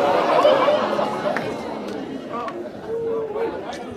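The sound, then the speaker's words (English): An audience at a comedy show oohs together in reaction to a joke about George Floyd, a dense murmur of many voices that starts strong and eases off, with a few drawn-out vocal tones rising above it. “Don't ooh at that joke.”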